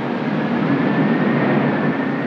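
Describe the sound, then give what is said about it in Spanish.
The wind of an approaching hurricane roars in a steady, dense rush, a thin high-pitched shriek running faintly through it, holding constant in loudness for the whole stretch with no voices. “Y el chillido del huracán que se aproxima.”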